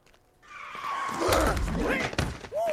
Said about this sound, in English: A car wreck is unexpected and can happen to anybody.